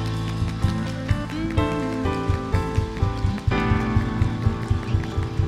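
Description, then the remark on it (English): A crowd at a worship gathering claps hands together in a steady, rhythmic beat, the sharp slaps layered over loud sustained keyboard chords and a bass line. “Everybody clap.”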